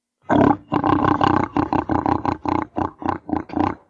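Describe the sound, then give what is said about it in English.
A person imitates a pig with a rapid string of loud, raspy grunts and snorts, about a dozen bursts in quick rhythm, rough and throaty with no words. “You want to hear a pig sound?”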